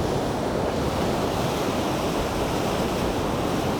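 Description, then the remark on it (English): Loud, continuous roar of ocean waves smashing through a rocky gully at the Devil's Cauldron in brutal conditions, crashing and churning in a dense wash of water noise, with gusty wind buffeting the microphone throughout. “The waves are smashing through the gully.”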